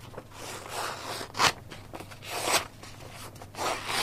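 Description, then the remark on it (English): A zip is pulled back and forth several times, each stroke a short, raspy burst, with brief pauses between and no talking. “I tell you what's sexy as well, zips. Zips are sexy, don't you think?”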